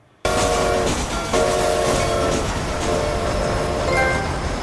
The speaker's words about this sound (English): or you like hogtied her, and then put her on the train tracks and waited until the train came.